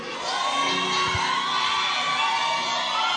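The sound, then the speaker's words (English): A large crowd shouts praise and cheers together in a continuous, loud roar that fills the room, with many overlapping voices yelling and whooping and no clear speech. “Let the sons lift up a shout of praise in this room like you lost your mind.”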